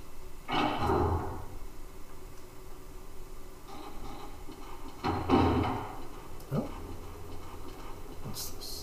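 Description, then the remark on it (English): A door creaks slowly open, opened by someone inside who crawls out, in a few drawn-out groaning bursts, with quiet pauses between them and a soft knock near the end, fairly clear with no talking. “The cupboard is slowly opening. By someone inside? Yes. Oh, it was a door, not a cupboard.”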